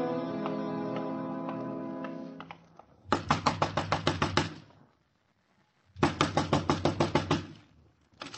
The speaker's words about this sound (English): Next time, knock soft, mister. You want something from Jonesy, the keeper of the garbage pails, the collector of rents, you'll knock soft.